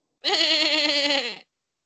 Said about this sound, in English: You're a shepherd with a bunch of sheep, right? Sheep goes by what? Or sounds like what? Baa.